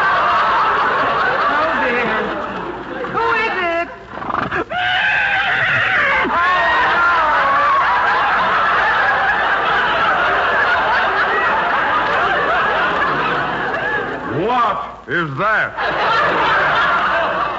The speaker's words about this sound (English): It sounded like a horse. That's just what it is, our milkman's horse. You see, the milkman is sick, so the horse is making the rounds alone.